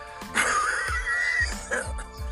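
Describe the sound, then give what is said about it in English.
A run of about four deep, forceful, deliberate coughs from the bottom of the stomach, alternated with deep breaths, each a harsh burst with a low chesty thump, joined by a raspy, wheezy strain of breath between them. “When you're coughing like that, what will happen is in the process of your coughing, your chest will constrict.”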